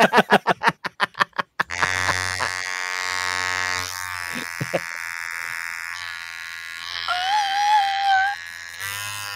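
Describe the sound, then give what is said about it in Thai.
A massage gun pressed down to massage thumps in a quick run of about eight loud, evenly spaced pulses, then settles into a steady, low mechanical buzz that rises and shifts in pitch toward the end, with no voices. “ปืนนวดนี่ดีนะเพราะว่าปืนนวดนี่เป็นของที่ใช้ดี มันก็จะนวดกดปุ๊บนะ”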